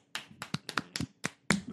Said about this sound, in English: I was tapping the table.